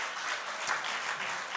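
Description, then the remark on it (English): A crowd clapping their hands unto the Lord, applauding steadily in a dense, even wash of many hands clapping at once with no pauses, moderately loud throughout. “Clap your hands unto the Lord and magnify him in his house.”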